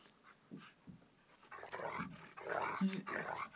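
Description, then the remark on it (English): A wolf growls at the door, a rough, rumbling snarl that starts quietly with short breathy bursts, then swells into a louder, sustained growl over the final seconds. No one speaks. “He's just growling at the door.”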